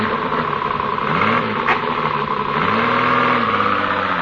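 A car engine revs up loudly and pulls away, its pitch climbing twice as it accelerates through the gears, with a steady rumble throughout and no voices.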